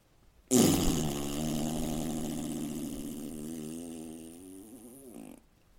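loud fart

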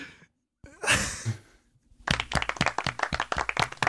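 applause

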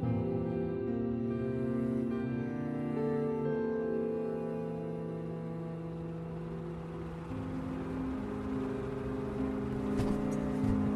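car driving off

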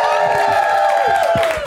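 crowd cheering and applauding

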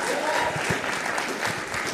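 sparse audience applause

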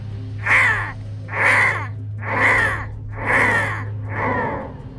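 crows cawing loudly

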